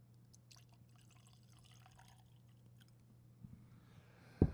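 Bourbon trickles faintly from a small vial in a few soft wet drips over a steady low hum, ending with a sudden sharp knock.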